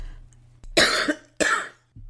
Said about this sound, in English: I coughed so hard before getting on the plane from Dublin to the States that I started crying